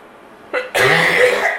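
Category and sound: human body sound, coughing fit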